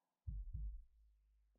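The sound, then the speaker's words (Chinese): Two quick, heavy low thumps of a fast heartbeat sound effect, booming, followed by a fading low rumble and a faint soft tap at the end. “可是，身体怎么感觉突然好热呀？心跳也跳得好快。”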